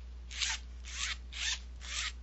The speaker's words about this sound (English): On the outside of the case, you have a zipper.